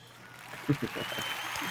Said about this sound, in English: Ladies and gentlemen, I think he deserves a round of applause. You all do, because you're all fantastic. So I should use the other one as an expanded clap.